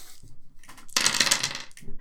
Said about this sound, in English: So roll an attack with 10 base dice. Now if you hit, the victim counts as grab.